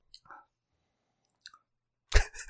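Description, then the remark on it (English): A few soft mouth noises and small clicks, then a sudden loud slurping sip of homebrew beer near the end, with no one speaking. “He's going for a second sip.”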